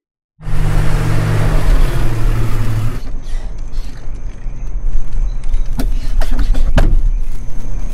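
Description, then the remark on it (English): A car door creaks loudly with a low groaning drone, then several sharp thuds follow as it bangs shut, with no voices present. “Don't slam the door.”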